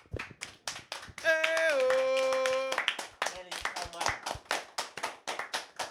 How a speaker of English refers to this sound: Damn, we didn't clap. We didn't. You want to clap now?